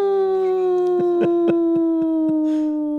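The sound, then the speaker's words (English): A voice imitates a dog singing at an ambulance, holding one long, steady tone that slowly sinks in pitch, with a few short, sharp bursts breaking in partway through. “Your ability to mimic your dog.”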